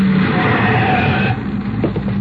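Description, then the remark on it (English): A loud, steady mechanical drone of cable car motors starting and running atop a mountain in Switzerland, with a low hum and a higher whine layered over dense rumbling noise that eases slightly partway through. No voices. “I'm starting the motors.”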